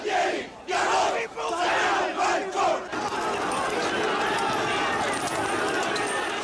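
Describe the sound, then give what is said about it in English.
A large protest crowd awaiting President Leopoldo Galtieri's scheduled outdoor address shouts and chants insults at his government over the Falklands surrender in loud rhythmic bursts, then the noise swells into a continuous, dense, overwhelming roar of many angry voices yelling at once. “Then, suddenly, the police struck back, firing tear gas and rushing the crowd.”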